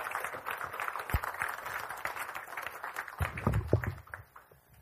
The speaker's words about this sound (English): So can we give her a round of applause as she comes up to share her story with us?